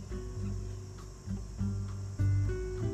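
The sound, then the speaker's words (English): Insects buzz outdoors on a beautiful day in a low, steady drone that rises and falls in pitch, with a faint high hum behind it and no voices. “The insects are buzzing.”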